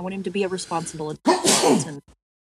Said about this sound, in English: Bless you.